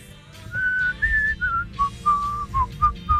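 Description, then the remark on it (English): Someone whistles a short melody, a string of clear sustained notes shifting up and down in pitch, with a low rumbling background underneath and no talking. “let people later tell us what their favorite whistling rock and roll song is.”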